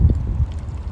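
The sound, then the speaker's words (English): Water of the Columbia River laps against rocks on its bank in a low, steady wash, with soft irregular sloshes and gurgles over a continuous rumble. No one speaks. “I'll close out by saying I was about 45 minutes ago, I'm sitting on these rocks next to the water”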